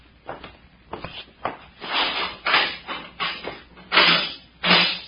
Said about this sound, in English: Here is the key to it. Unlock it.